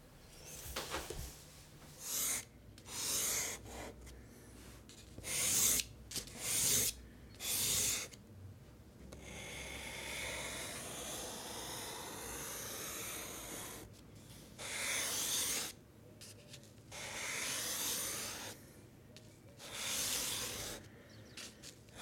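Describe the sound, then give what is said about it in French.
Charcoal scratching across paper in a series of short gritty strokes, then a longer steady rubbing passage, then more bursts of scraping strokes. No one speaks. “C'est du fusain.”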